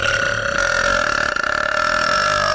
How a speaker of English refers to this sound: I'm gonna burp. I'm gonna do everything an alcoholic does. You should. You should burp.